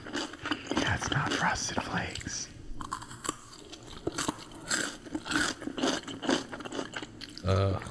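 Loud crunchy chewing with wet, slurpy mouth noises, repeated bites and munches in an uneven rhythm, with soft whispering underneath.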